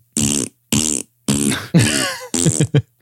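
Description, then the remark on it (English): A rapid run of five loud fart sound effects, made as coins farting during a battle in a study, each a buzzy, brassy blast, the final two shorter and clipped, with no talking around them. “you're in the middle of this battle and the coins start farting.”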